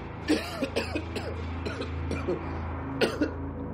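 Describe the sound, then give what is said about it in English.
A man coughs several times in short, rough bursts, some with a voiced, throaty edge, over a steady low rumble in the background. “I stared at the heart for a while, examining all the veins and ventricles before Neil coughed.”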